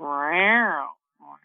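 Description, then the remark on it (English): A person mimics a cat with one long, drawn-out meow that rises and then falls, followed after a short pause by a brief, softer vocal sound. “Oh my gosh, you guys, I did a cat call on air.”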